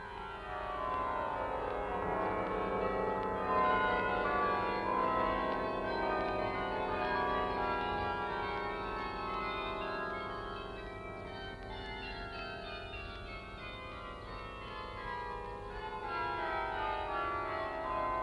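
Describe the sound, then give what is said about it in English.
The famous cathedral carillon, played by Dr. Stavka Brose and welcoming passengers landing from liners, rings out in a cascade: a rich, continuous run of overlapping chimes, with rapid descending runs of pitches blending into a resonant, echoing wash, moderately loud with no voices. “Sometimes passengers landing from liners are welcomed by the famous carillon of the cathedral, played by Dr.”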